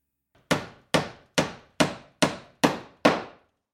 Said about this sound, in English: Well, why don't you grab a hammer and start fixing these things into place?